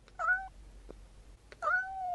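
A cat meows twice, each call a drawn-out, wavering cry with a short pause between them, fairly loud against a quiet low hum.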